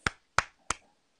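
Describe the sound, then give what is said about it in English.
Three soft, polite claps spaced evenly about a third of a second apart, each a brief crisp smack with a short decay, then quiet; a sarcastic golf clap with no talking. “Golf clap.”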